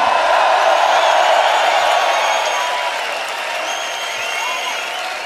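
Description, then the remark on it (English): A large crowd claps and cheers in a dense, continuous roar of applause that stays loud throughout, easing off slightly toward the end, with no one speaking over it. “No, you're just going to scream something exceptionally loud and loads of people are going to clap.”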